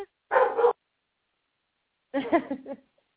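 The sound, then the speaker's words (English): A dog brought to work barks at something it hears outside, in two separate bursts with a pause of silence between them, the second bark longer and more drawn out, clear with no talking. “So what should I be doing now as he's barking?”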